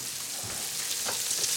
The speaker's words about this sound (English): I'm just stirring up the onions. I'm just cooking them on this flat top a little bit. You hear me moving these onions around. You hear it sizzling.